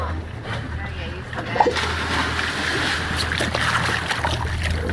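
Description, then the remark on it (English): A person splashes into water with a brief sharp plunge early on, followed by continuous sloshing and churning water that stays fairly loud throughout. “Cam, Steve, Kimmy, and Perrin are in the water.”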